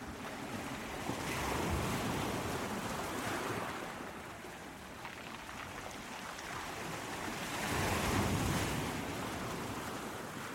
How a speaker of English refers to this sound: Waves crashing against the rocks, small pebbles rustling down the beach in the withdrawing water.